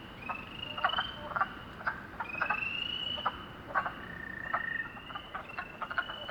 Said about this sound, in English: It is now April 24, late in the afternoon. I'm back in Shendagon Hollow, next to a beaver pond. Wind blows over the ridge above. Wood frogs chuckle and spring peepers peep, though not very excitedly.